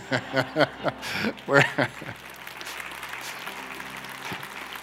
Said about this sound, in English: Thank you. I'll promise you, if you'll continue to come back, we won't make you clap for us every time we come. That's a little goofy anyway, but I'd be lying if I didn't say I enjoyed it a little bit.